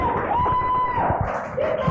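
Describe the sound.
A church audience at a morning service of Takeover Church claps and cheers loudly and steadily for Jesus, with shouting voices and a sustained whistle-like tone rising over the dense, continuous noise.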